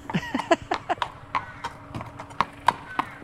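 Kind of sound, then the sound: animal, horse hooves walking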